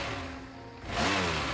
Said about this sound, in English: I revved the engine.